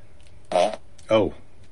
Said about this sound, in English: Yeah. I turned on the fart machine. Yeah. And then you push the button. So if you turn on the fart machine and you push the button, it will fart. It's quite reliable.